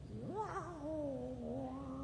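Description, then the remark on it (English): A prowling neutered male cat in the bushes of a yard lets out a long, drawn-out caterwaul, its voice rising sharply then wavering low and steady for about two seconds, loud with no talking. “So I was sitting there yesterday out in the yard, and I hear this sound of the prowling cat.”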